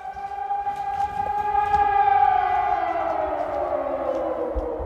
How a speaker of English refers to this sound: But they do all that as air raid sirens go off multiple times a day and between daily missile strikes on the city.